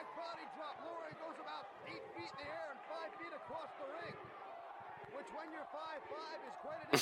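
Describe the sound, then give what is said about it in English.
Heavy thuds of a wrestler slamming onto a ring mat recur beneath busy, overlapping voices as Paul Lauria takes a back body drop in a match with Mikey Whipwreck, with a louder, sharper impact right at the very end. “Back body drop.”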